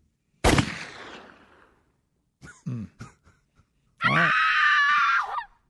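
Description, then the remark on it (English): A girl, one of the Girl Scouts, lets out a loud, shrill scream lasting about a second and a half, after a sharp burst and a few short grunting sounds. No one speaks. “I know that's a girl, but I would scream like that.”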